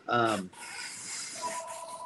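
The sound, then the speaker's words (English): A brief burst of voice gives way to a phone ringing, with steady electronic tones sounding at moderate volume over a hiss of background noise near the end. “My phone's ringing already here.”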